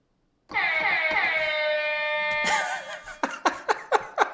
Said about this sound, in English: I love it so much. One more time. So if you hear the hype air horn, that means it's important.